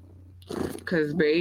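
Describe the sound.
A person does a brief vocal imitation of a cat's purr, a rough rolling rasp that gives way to a louder, voiced trill, clear.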